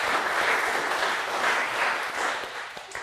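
A crowd applauds steadily, a dense wash of many hands clapping at an even, fairly loud level for a few seconds without pause.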